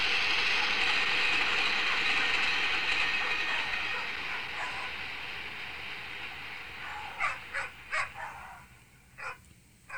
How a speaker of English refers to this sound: So it has this train going by at the very end of it